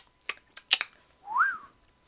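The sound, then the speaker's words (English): A few breathy puffs and clicks, then one short, wavering whistled note that rises and falls, moderately loud, from someone who cannot whistle yet and is learning. “For those of you listening, I cannot whistle, but I've been learning.”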